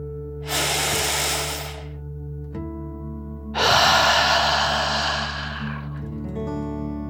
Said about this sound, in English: Before we begin our story, let's relax by taking a nice deep dragon breath. Breathe in through your nose, filling up your lungs, and then out through your mouth, imagining you are breathing fire like a dragon. Ready? Deep breath in and out.